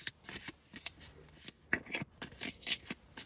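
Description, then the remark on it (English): A deck of cards being shuffled, a run of quick crisp riffling bursts and soft slaps spread across a few seconds, with no voices. “Let me see. Let me shuffle.”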